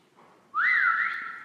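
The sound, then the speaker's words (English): A loud, sharp whistle made with the fingers by a young man at the end of a cul-de-sac starts abruptly and sweeps upward, then wavers in a rising-falling call before holding steady, like the classic two-note whistle used to summon a dog. No one speaks. “And he whistles, you know, that whistle that I can only describe as like a traditional dog whistle, you know, that one that the one that beckons Fido to you.”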